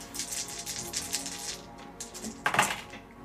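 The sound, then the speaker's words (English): Dice clatter and tumble across a hard table during a tabletop role-playing game, in a rapid burst of small clicks, quiet for a moment, then a sharper rattle as more dice land. “These are funny dice.”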